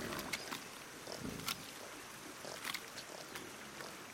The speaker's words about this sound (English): To one side of the barn, a mama pig and her pink piglets with twisty little tails play with one another in the mud, making quiet oinking sounds.